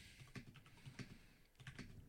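Someone types on a computer keyboard in a quick, uneven run of soft clicking keystrokes, fairly quiet and close, with no voices.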